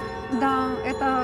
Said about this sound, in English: Yes, these all bells are different sizes, and they are played by hand.